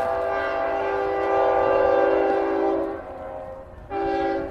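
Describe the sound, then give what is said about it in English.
A passing train sounds its horn in a long, steady blast of about three seconds, then starts another after a short gap, rumbling, with no voices. “There's another train.”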